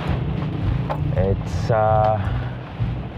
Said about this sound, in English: It's quite a busy street. Lots of cars. One side is the wall of embassy.